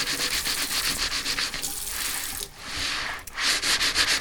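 Brisk, rhythmic scrubbing of a greasy pan, steady back-and-forth strokes, briefly giving way to a smoother rush like running water before the scrubbing resumes. No voices.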